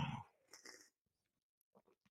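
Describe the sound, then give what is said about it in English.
A quick slurping sip of Jack Daniels whiskey from a shot glass, then a hiss of breath and a few faint wet mouth clicks and swallows in near silence. “Lovely sip of Jack Daniels.”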